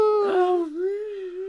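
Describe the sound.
A person's voice imitates a wolf howl: one sustained, wavering note of about a second and a half that dips midway, rises again and holds steady, with no other sound behind it.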